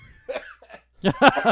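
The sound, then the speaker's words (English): A coughing fit from a man trying not to cough: a couple of stifled, muffled coughs come first, then a louder run of harsh, rapid coughs bursts out at the end. “the guy who is desperately trying not to cough that whole time”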